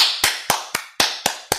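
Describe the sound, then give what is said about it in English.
Six crisp hand claps in a steady, quick rhythm, each sharp with a short ringing tail, and no voices. “Give us a hand of applause.”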